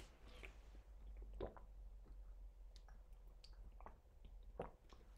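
Someone drinks water, with soft wet gulps, swallows and small mouth clicks spaced irregularly over a few seconds. The sounds are quiet, and nobody speaks.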